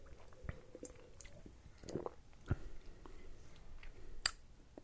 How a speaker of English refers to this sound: It's, let me take one more sip, see if I can get it.